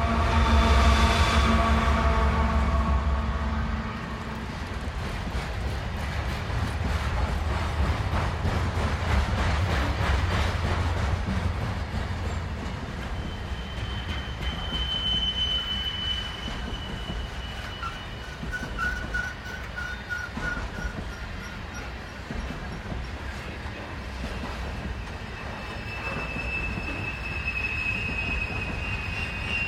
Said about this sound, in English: We leave you this week with the rhythm of a coal train winding its way through Colorado. Clay Reeves recorded the scene for ….